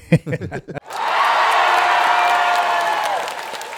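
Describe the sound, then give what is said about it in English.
A brief burst of speech gives way to a crowd's sustained, dense hand clapping, celebrating someone picking up a first sponsee, lasting about three seconds with faint cheers mixed in, before easing slightly at the end. “I had a hand clap for that.”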